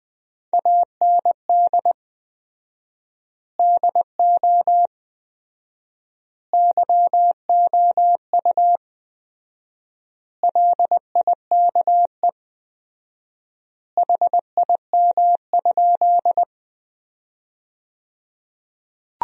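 Morse code sent at 20 words per minute with 4x word spacing, sentences from the top 100 words: a single mid-pitched tone keyed into quick dots and dashes, arranged in five clusters separated by long silent gaps, with no voices.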